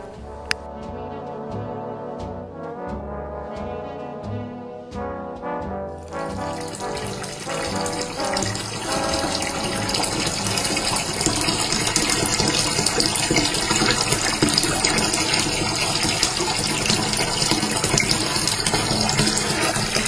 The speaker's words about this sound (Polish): Dźwięk, który słyszycie, to nie jest szemrzący strumień gdzieś w górach, to nie wodospad, to kran w mojej wannie.